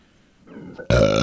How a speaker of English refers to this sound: You stole my burp. That one was mine.